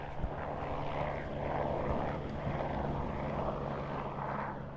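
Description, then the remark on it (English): A medical helicopter runs steadily as an injured person is taken to it, its engine whine and rotor wash forming a continuous broad roar with a low droning hum underneath, holding fairly constant in loudness. No one speaks. “The medical helicopter staff do what they do. We shoot a few images, and they take him to the chopper.”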